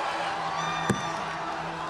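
A large rally crowd at the Washington Monument on the morning of January 6, 2021, where Giuliani spoke, roars and cheers in a steady, dense wash of noise with scattered whoops, broken by one brief sharp burst midway through.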